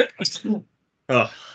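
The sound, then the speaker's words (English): A brief voiced gasp, a short pause, then one loud sneeze bursting out abruptly and trailing off quickly. “That was probably a really loud sneeze for the...”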